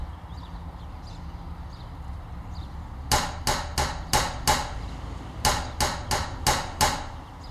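Loud banging on a door, as a person knocks, bangs and kicks it, comes in two rapid bursts of about five heavy knocks each, following a few seconds of faint background hum. No one speaks.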